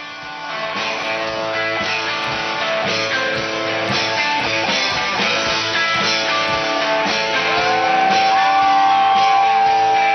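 A loud live rock tribute band plays, with dense, distorted guitars and a shouted, strained vocal riding over a steady, driving backing throughout.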